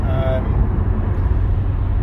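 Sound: car interior driving noise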